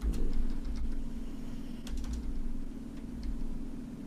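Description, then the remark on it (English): Irregular bursts of clicky computer-keyboard typing, done with one hand, a few quick keystrokes at a time with short pauses, over a steady low droning hum and no voices. “Bro, what kind of keyboard do you have? The way you typing?”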